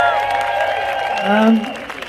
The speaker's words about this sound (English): That was incredible. So give him another round of applause, please.